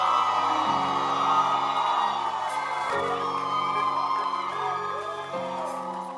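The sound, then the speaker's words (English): A crowd of about 17 people shouts, whoops and cheers continuously, a dense and loud wash of voices, with sustained musical tones humming underneath. “I mean, the 17 people who are shouting is not bad.”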